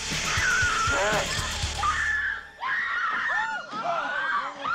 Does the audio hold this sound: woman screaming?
yes